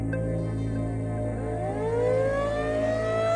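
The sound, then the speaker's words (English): A tornado siren howls steadily at 1 a.m. at night, its wailing tone sliding upward in pitch over a dense, continuous drone. Loud and sustained throughout, with no voices. “That night, I was awakened by a tornado siren at 1 a.m, a howling that matched the sound of the wind as it buffeted the sides of the house.”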